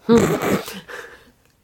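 A harsh, raspy cough close to the microphone, followed by a second, weaker cough that trails off into quiet.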